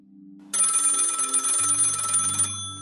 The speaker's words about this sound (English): Then, at 5 a.m., phone starts ringing.